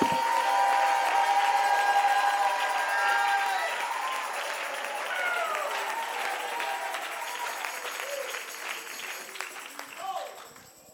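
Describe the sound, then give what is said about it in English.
An audience claps steadily and shouts together, a dense, loud wash of applause with raised voices calling out over it, sustained before tapering slightly near the end. “Somebody shout, somebody clap, somebody lift your voice.”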